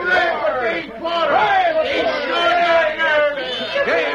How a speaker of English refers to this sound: Oh, they're cheering for you